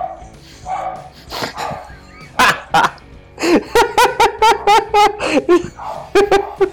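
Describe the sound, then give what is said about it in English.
A dog barks excitedly in a rapid series of sharp yips and barks, with a few whiny whimpers mixed in and a faint voice in the background; the dog is being driven crazy by a ringing phone and men using leaf blowers outside. “I've got the phone ringing. I've got the that's driving the dog crazy.”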